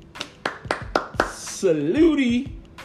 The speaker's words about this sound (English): He is playing his ass off, good people. He really is. Applaud and salute Dak Prescott.